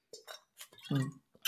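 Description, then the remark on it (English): A few light clinks of glass mixed with soft sipping of electrolyte water and a brief swallowing sound, short and fairly quiet with no one talking. “Sip of my electrolyte water.”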